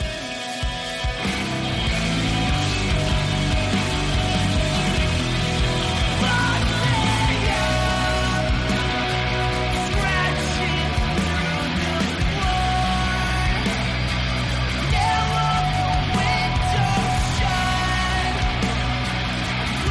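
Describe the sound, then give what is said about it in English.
A post-hardcore rock song by a newer Colorado band, released on Tooth and Nail in May, plays loud and steady for the whole stretch, a dense wall of distorted guitars, heavy low end and driving drums with no talking over it. “Tooth and Nail has put out two great rock records in May alone.”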